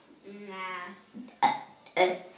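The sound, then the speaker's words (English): A person makes fake burps with their voice, a drawn-out croaky belch followed by two short, abrupt bursts in quick succession, fairly loud. “Well, we had a fake burp competition, and I won because I did the most fake burps in 13 seconds, so...”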